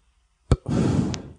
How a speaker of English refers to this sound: You want to hear my new fart noise?